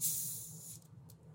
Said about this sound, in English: I own this Hal's seltzer that I was going to open on the air because I thought it would be a satisfying sound.